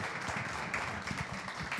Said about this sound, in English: So big round of applause for all of our speakers today, guys.